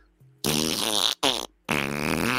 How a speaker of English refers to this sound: Fart noise.